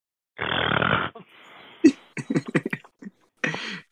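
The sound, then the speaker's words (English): A voice imitates loud snoring: a long, harsh rasping inhale followed by sputtering, snorting bursts and a final rough snore, prominent throughout. “He's still asleep. Snoring loudly.”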